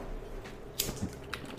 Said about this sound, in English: I got this new keyboard. It's silent stroke, so you can't even hear my clicks.